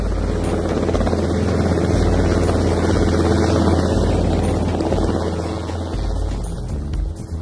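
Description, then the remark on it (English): A police helicopter arrives at Chongwe carrying Zamba Wazamba in the drama Land of Chongwe, its rotor beating in a steady rapid thump over a dense engine whine, loud and continuous throughout with no voices. “As Pambo and Zumari hurry to get back to work, Inspector Mwamto and his fellow officers are approaching Chongwe by road, while Zamba Wazamba is arriving by police helicopter.”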